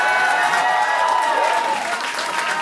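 A live crowd bursts into sustained applause, dense clapping mixed with a few cheers and whoops, loud and close throughout with no break in the noise.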